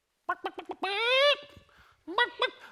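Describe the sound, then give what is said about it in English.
A person imitates a chicken while flapping their arms like wings, with a quick run of clucks, a long drawn-out squawk, then two more short clucks, loud with no other sounds. “Just because I flap my wings and make quite an effective chicken sound, I'm sure you'll agree, it doesn't make me an actual chicken.”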